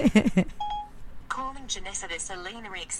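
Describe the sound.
A brief voice, then a single short electronic phone beep as a call is placed, followed by another voice speaking over faint background noise.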